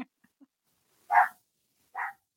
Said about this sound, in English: What is this dog barking about? You probably have a squirrel in your yard.